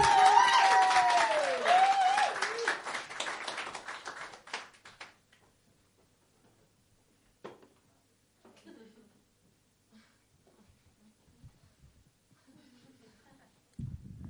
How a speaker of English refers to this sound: So yeah, that was the start of your applause. And go wild, go crazy, man.